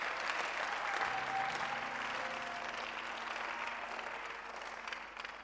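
Sustained, dense applause from an audience, a steady wash of many hands clapping for several seconds with a few faint voices or cheers underneath, tapering slightly toward the end.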